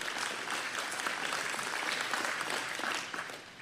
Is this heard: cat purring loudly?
no